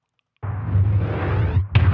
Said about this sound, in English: Yes, that is her gas tank exploding. I didn't edit that at all. I cut it. That's not the full explosion. I just wanted that one part. But I didn't stretch that. I didn't manipulate that. That is in the movie.